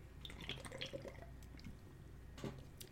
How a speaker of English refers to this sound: Yeah, you could hear me glug, glug that right out of the can. I needed it. I didn't even pour it into a glass. It's that good.